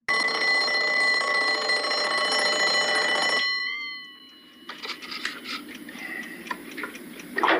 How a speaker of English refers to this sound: Did you see what I saw in that video? 4 a.m. is what I saw. One, the ring on that clock was, oh my God, god awful, annoying.